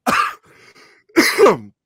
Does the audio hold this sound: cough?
yes